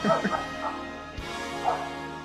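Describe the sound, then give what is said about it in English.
The speaker's dogs bark in a few separate bursts spread across a couple of seconds, moderately loud, with a steady low hum underneath. “My dogs are going.”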